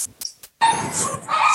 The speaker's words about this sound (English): I apologize. My dogs are barking in the background.